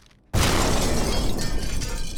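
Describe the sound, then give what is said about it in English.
After a brief near-silence, a loud explosion downtown bursts in abruptly and keeps roaring with a dense, crackling rumble, like debris shattering, fading only slightly by the end. No voices are heard. “This just in, extremely devastating explosion downtown.”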